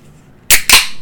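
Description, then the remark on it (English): Dice clatter onto a table in two quick, sharp bursts of rattling noise, fairly loud, then settle into a fading hiss; the roll comes up a 19. No one speaks. “Listen to this dice roll.”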